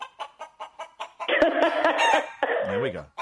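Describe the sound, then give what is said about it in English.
A chicken clucks in a quick, even run of short pulses, then breaks into a loud, sustained squawking cackle that tails off in falling notes. Clear, with no talking. “But we have a little thing we like to play for people like you, and it goes like this.”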